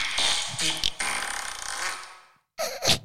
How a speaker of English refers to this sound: You popped a fart.